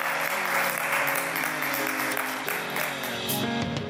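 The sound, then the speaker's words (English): A standing crowd claps steadily and enthusiastically in praise of the Lord, a dense, sustained wash of many hands, with a faint sustained musical tone or murmuring voices underneath. “Stand at your feet and give the Lord another hand clap of praise.”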